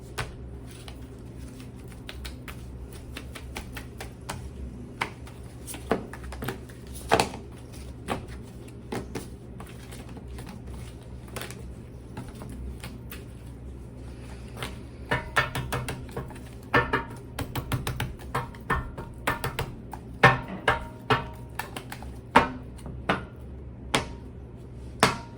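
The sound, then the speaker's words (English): A deck of tarot cards being shuffled: soft flicks and papery snaps in irregular bursts, growing busier toward the end, over a faint steady hum with no talking. “We are going to just shuffle them a little bit. Just going to shuffle this.”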